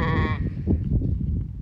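A sheep on a farm in central Wisconsin lets out one loud, wavering, nasal bleat, then a low, muffled jumble of farmyard noise carries on beneath fainter sounds from the flock.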